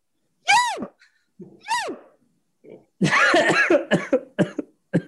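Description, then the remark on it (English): Two short, high, wavering vocal yelps, then a harsh burst of several rapid, rough coughs, loud and choppy, ending in a few separate hacking coughs. “I don't think I've ever coughed at a you, and that's for a reason.”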